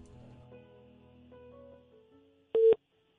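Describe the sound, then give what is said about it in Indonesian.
A single short, loud telephone ringback tone sounds near the end while a call is being placed, a brief steady beep after a few seconds of faint low humming, with no one speaking. “Kalau enggak ada nada tunggunya lagi, udah enggak ada tut-tut langsung halo gitu ya.”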